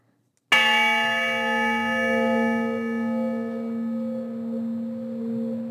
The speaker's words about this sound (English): And indeed, the honor bell did toll for Luis Oliveira. He passed away in 2018, a year after we spoke, and was laid to rest at Fort Logan.